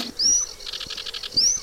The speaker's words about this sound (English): Our bird this week is the sedge warbler. Sedge warbler.